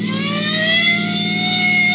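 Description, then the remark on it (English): A police car siren, sounded from a sheriff's car chasing another car, wails loudly and continuously, its tone slowly rising, over a steady low rumble of engine noise, with no one talking. “The siren now.”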